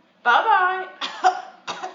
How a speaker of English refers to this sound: Did you just cough? It was you.